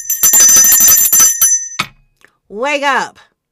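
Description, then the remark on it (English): A small bell rings rapidly and loudly for about a second and a half, a bright trilling jangle, then stops; a man's voice follows briefly after a short pause. “That one, hello, get my bell.”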